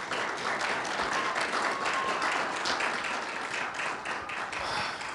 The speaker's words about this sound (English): So can you give yourself a hand clap? Yeah.